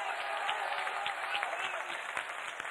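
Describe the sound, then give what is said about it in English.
An audience clapping their hands: dense, steady applause of many overlapping claps that holds at an even, moderate loudness for the whole stretch without pausing. “Go ahead and clap your hands again.”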